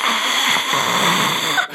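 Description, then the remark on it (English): A voice imitates a mummy's rattling gasp: one harsh, breathy rasp held for nearly two seconds, fairly loud, before it cuts off abruptly. “It shambled its way out of its tomb in that unrattling gasp.”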